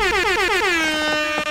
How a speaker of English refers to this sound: Let's give you all an air horn.